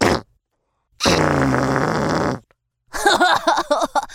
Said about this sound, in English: … loved to fart at his friends.